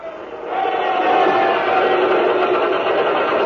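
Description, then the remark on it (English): Pumps start up on convoy ships docked at Malta to suck the oil out of their holds: a steady mechanical rumble and whir swells in after a brief moment, then holds loud and even with a faint whining tone running through it. “And you hear the pumps get going.”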